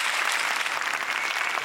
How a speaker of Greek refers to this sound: Εδώ χρειάζεται το χειροκρότημα και είναι και πολύ σημαντικό. Ευχαριστούμε θερμά.